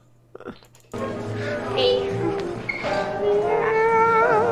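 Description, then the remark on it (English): After a brief click, a man imitates a cat, producing loud, drawn-out meowing tones that rise and waver continuously for several seconds as he dances over to people. “Is he meowing?”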